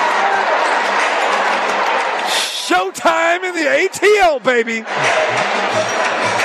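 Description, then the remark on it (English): A large basketball arena crowd of Aces fans roars steadily, rooting for A'ja Wilson as she goes for 50 points, a dense wash of cheering that briefly gives way to a man's amplified voice in the middle before the cheers swell back up. “And you can hear the crowd rooting for Asia Wilson.”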